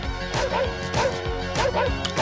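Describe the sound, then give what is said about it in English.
From the film National Lampoon's Vacation: a dog barks repeatedly in sharp bursts, about four times at a steady pace, mixed with loud crashing and clattering as it goes at the picnic basket, over a busy, continuous background, fairly loud. “The dog went on the picnic basket.”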